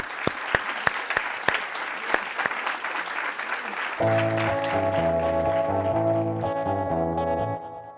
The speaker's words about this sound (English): And on that note, let's give our panelists another round of applause.